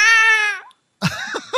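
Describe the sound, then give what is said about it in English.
A cat held by a person meows loudly: one long, steady yowl that trails off, then after a short pause a second, wavering meow with a rising, broken quality. “What are you doing to that cat to make it make that noise?”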